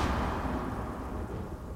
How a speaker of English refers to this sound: And here we are in Fair Park, and it's about to rain. It was a ferocious thunderstorm that day, and we were wet and cold. And the lightning was so fierce, it bounced off of the barbed wire.